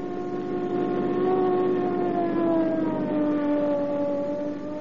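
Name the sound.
police car siren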